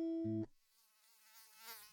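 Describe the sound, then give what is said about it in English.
A brief loud electronic tone cuts off, leaving a mosquito's thin, wavering buzz in a pillow fort, faint at first and swelling slightly near the end. “There is a mosquito in the pillow fort.”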